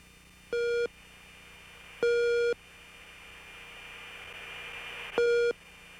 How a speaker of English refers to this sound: All right, so we got some tones there. What are those? Those are raw gear, RWR, radar warning receiver tones. It's very interesting. I was in aircraft 410 that day.